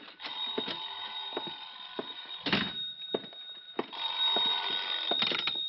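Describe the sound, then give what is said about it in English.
A telephone bell rings continuously and fairly loudly, a bright metallic jangle with sharp clattering hits mixed in, heard on its own without any voices. “Oh, sorry, I think that's my phone.”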